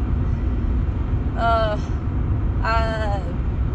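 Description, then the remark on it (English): Steady low-frequency rumble of a car interior while driving in Montana, constant throughout, with two brief voice-like tonal bursts rising over the road noise. “I'm just getting a feel for talking while I'm driving.”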